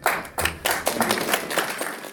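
A slow clap: hand claps ring out one after another in a steady, unhurried rhythm, each a sharp, bright smack at moderate volume with no voices over them.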